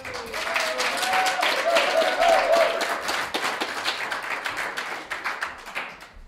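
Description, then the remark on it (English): The live audience at a church meeting, their first meeting in a year, bursts into steady applause, dense overlapping claps that hold loud for a few seconds, with a brief faint voice near the start, then gradually thin and taper off. “If you can just give an applause, people will know that you're here.”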